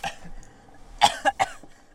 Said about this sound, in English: She's coughing outside now.